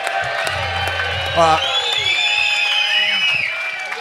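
audience applause and cheering

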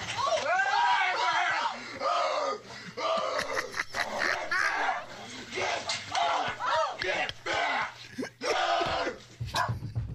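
man yelling

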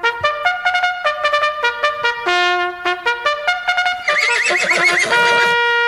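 horses neighing

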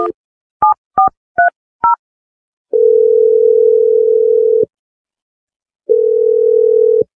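telephone number being dialed

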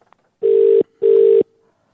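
phone call ringing out

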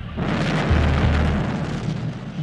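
massive explosion

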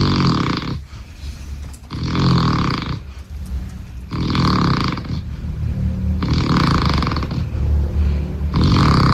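person snoring loudly

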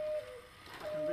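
cuckoo clock calling

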